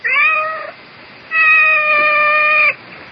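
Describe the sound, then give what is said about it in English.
A female cat meows twice, loud: a short cry, a brief pause, then a longer drawn-out meow, with no other sounds around it. “I seem to have this cat.”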